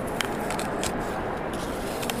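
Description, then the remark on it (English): Crisp, juicy crunches from biting into a local Granny Smith apple, several sharp crackly bursts scattered over a steady background hiss, with no talking. “Yeah, I'll just do the crunch real quick ASMR.”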